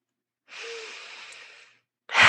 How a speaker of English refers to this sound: And every inhale in through the nose, out through the mouth, perhaps you're fostering your aura.